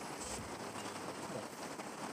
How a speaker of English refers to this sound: The rain is starting up again.